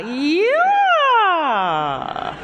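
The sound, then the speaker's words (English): Singer Renée Fleming does a vocal siren warm-up: one sustained voiced tone glides smoothly up to a high peak, then slides slowly down to a low pitch, ending with a brief fluttery waver. “Can you do a siren for us?”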